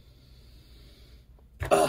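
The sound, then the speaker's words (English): After a quiet stretch of low background hum, one short, sharp sniff of coffee during a tasting, a brief breathy rush of air drawn in through the nose. “Let me take a sniff of the coffee because I'm going to go down the line and then we're going to sip.”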